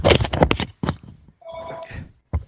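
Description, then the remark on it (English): A telephone rings, a rapid, rattling trill of bell bursts followed by a brief, steady electronic tone, then another short burst at the end. “Because it was ringing during the podcast.”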